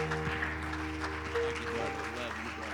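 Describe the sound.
A church audience claps its hands to the Lord in a dense, steady patter over sustained organ-like chords, with a murmur of voices mixed in throughout, as the pastor is welcomed to the pulpit.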